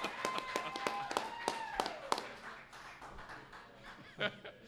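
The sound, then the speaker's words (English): A small audience at a fan event claps for a returning guest in brisk, uneven bursts for about two seconds, with a brief whistle-like cheer among the claps, then the applause fades into quiet murmuring and a faint laugh. “Everybody give Keith Greger a round of applause, the Iron Horse.”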